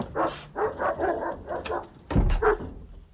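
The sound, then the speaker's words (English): A hound barks over and over in a quick, insistent series of sharp barks, loud, with a heavier burst near the end and no voices. “It's just me and the hound, I'm afraid.”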